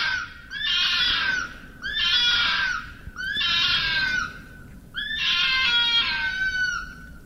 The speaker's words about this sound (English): It says here in one of these videos, it's foxes making love. Foxes do not make love.